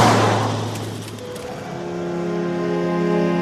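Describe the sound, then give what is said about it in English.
A Mercedes-Benz car driven by Turkish guest workers from Germany travels along a road near Belgrade, its broad rushing road noise easing into a steady, humming engine drone that holds loud and continuous throughout. “Turkish guest workers are driving night and day from Germany in luxurious Mercedes-Benz cars.”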